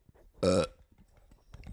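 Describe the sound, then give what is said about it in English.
A pet named Frankie lets out a single loud, throaty burp lasting about a quarter second, abrupt, followed by quiet with faint low background rustling. “That was a big burp.”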